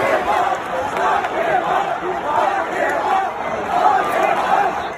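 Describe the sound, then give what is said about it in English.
A large stadium crowd at an Astros game in Washington roars with sustained booing and collective shouting as President Trump is announced, then chants "lock him up", a dense wall of many voices that swells and surges rhythmically, loud and continuous throughout. “So that was, of course, the crowd booing and then chanting, lock him up.”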